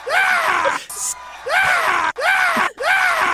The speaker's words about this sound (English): Nature of the scream. If he had screamed like a normal scream, I don't think it would have taken off. Yeah. But that is not a normal scream, people. That is like a crazy man scream.